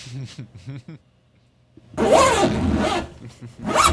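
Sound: zipper sound effect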